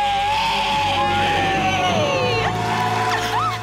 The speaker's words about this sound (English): Count it down. Let's hear a great debt-free scream. 3, 2, 1, we're debt-free!